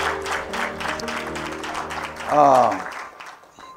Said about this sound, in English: In Jesus' name, amen. Everybody give God a hand clap of praise. Hallelujah.